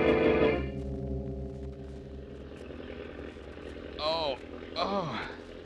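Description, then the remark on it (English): A steady, droning airplane engine roar from Jim's plane at high altitude, with a deep harmonic hum, loudest at the start and then holding even, while brief voices break in near the end. “What's that roaring noise? An engine. An airplane engine.”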